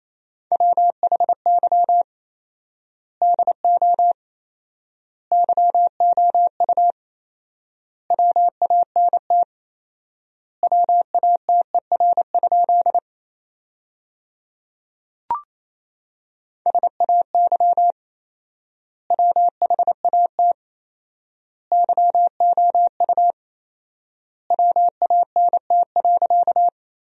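Morse code at 28 words per minute, sending practice sentences from the top 200 words with 4x word spacing: a single steady mid-pitched tone keyed in rapid dots and dashes, grouped into words separated by long pauses, with one brief click partway through.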